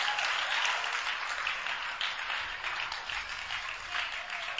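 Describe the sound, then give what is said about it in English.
An audience claps steadily as a lady pastor is invited to step up, a dense, continuous patter of many hands with no gaps, fairly loud and bright, with no clear voices standing out. “Those who are clapping, you have the first visit.”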